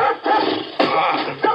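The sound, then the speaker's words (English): An old hound dog charging around the side of a house barks loudly and harshly, about four sharp, ragged barks spaced irregularly over a second and a half, with no one talking. “Old hound dog came charging around the side of the house, sounding a lot meaner than he looked.”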